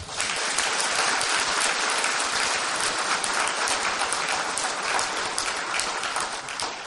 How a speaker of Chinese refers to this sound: 我们呢再一次用热烈的掌声感恩他们。